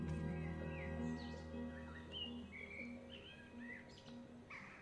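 bird, birdsong

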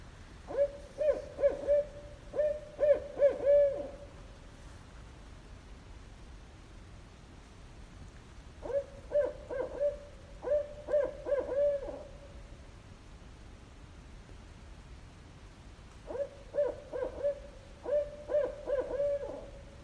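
bird, owls hooting

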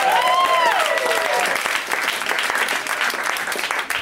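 crowd, audience applause and cheering

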